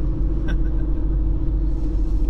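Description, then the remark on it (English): Steady low car rumble from inside a vehicle moving through building traffic coming into Phoenix, a constant droning road noise with faint brief squeaks, no voices. “What the fuck is traffic building coming into Phoenix?”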